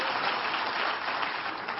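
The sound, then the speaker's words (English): A crowd claps hands to thank God in a steady, dense patter of applause that holds at an even level throughout, with no voices standing out above it. “If you're ready, clap your hands and thank God for being ready.”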